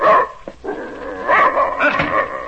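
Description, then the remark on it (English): A large German shepherd dog named Savage, which came out of the army, barks loudly, a few harsh barks running into growly, whining yelps, with no one talking. “Keep that animal away from me. German shepherd dog, that's what he is.”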